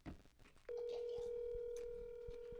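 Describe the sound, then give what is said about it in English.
A cell phone tone on an outgoing call: after a brief muffled rustle, a loud, steady electronic tone starts and holds unbroken for about two seconds, clear. “Let's call the man. Let's see if he picks up.”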